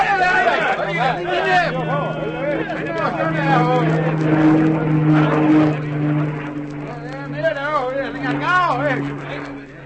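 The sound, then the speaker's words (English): A steady, low engine drone of a plane flying over hums continuously for the whole stretch, fairly prominent, while several people talk and chatter over it. “It must have been the plane. They stopped to look at it as it went over and changed their direction when they moved off again.”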